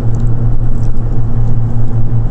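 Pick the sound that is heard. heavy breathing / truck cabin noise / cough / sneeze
truck cabin noise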